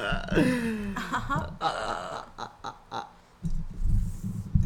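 human body sound, burp

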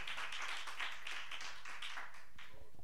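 crowd, audience hand clapping

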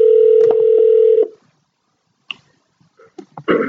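signal or alarm, telephone dialing tones

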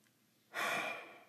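human body sound, deep breath

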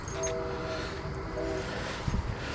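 vehicle, train passing by

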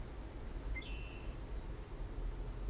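bird, bird calling

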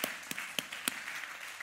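crowd, audience hand clapping

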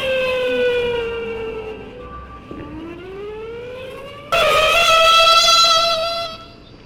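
signal or alarm, siren wailing

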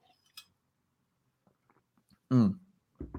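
food or drink, sipping tea

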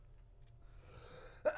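human body sound, sneeze

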